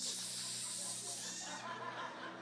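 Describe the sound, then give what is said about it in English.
A voice imitates a wife spraying disinfectant on her husband, who had COVID, producing a steady, bright hiss that holds for over a second and a half before tapering off, with a faint chuckle mixed in. “I'm going to die from that junk you spraying on me.”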